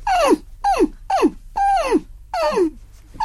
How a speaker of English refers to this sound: Crying dog, barking dog, barking dog beginning to bark.